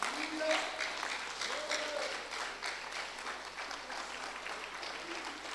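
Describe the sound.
An audience rises to its feet and claps as a clap offering to Jesus in a dense, steady wash of applause that holds for several seconds, with a few raised voices calling out faintly beneath the clapping.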